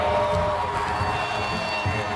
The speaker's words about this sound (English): As Freddie trotted onto the field, RFK Stadium erupted.